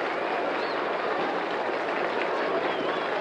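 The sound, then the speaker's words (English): A ballpark crowd at a Major League Baseball game claps steadily for pitcher Hal Newhouser as he strides up to the plate to bat, in a dense, unbroken wash of applause that holds at an even, fairly loud level for a few seconds, with a faint whistle rising briefly above it. “So Richards starts off the first, and a round of applause is for Hal Newhouser as he comes striding up to the plate.”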